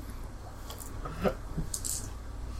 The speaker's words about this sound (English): Do I hear the clicking of, like, guns being, like, because it's pulpy. Yes, you have heard two guns click.